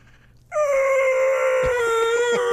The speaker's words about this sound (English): Here's 45 minutes of screaming spiders.